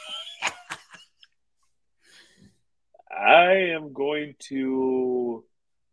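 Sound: person coughing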